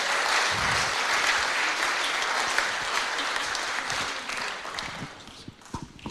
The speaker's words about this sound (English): Let's give the Lord a clap offering. God bless you all.